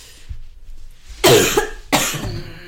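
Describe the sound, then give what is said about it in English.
Two harsh, painful coughs in quick succession from a person whose back hurts when coughing, the first one longer and rougher, the second following about half a second later, with quiet background between them and no talking. “It's so painful when I cough my back.”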